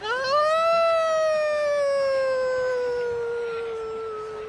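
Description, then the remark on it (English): A woman lets out one long, loud howl that swoops up and then slowly sinks over several seconds, imitating a wolf or dog. There is no talking around it. “Now I'm gonna howl.”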